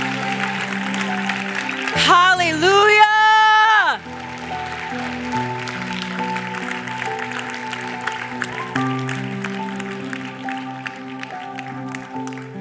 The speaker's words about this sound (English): Can we give God a clap of praise in this room?